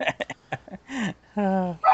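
A female dog barks in a quick series of short yaps, then lets out a couple of longer, drawn-out, whining barks, loud, with no one talking.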